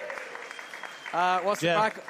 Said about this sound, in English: Big shout-out to Justin Marshall and Jeff Wilson, who are in the crowd here tonight. Give them a big cheer.